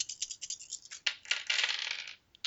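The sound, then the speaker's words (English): Dice clatter and rattle on a hard surface as two extra dice are added to the roll, starting with quick scattered clicks and building into a longer rolling tumble before settling, fairly clear with no talking. “All right, so add 2 extra dice.”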